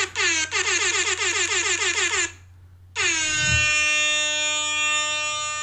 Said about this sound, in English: So that alarm is going to be the end of their 2 minutes. That's just for the listeners. Hopefully you're not annoyed.